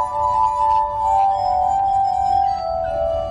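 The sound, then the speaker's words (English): A glass harmonica, played with wet fingers while a foot drives a large spinning wheel on a metal rod that turns the glasses, sings with sustained, overlapping ringing tones that hold steadily and shift pitch slightly near the end, clear over a faint low rumble, with no one speaking. “And then I'm using my foot to make all the glasses move at the same time. So I can play any glass I want.”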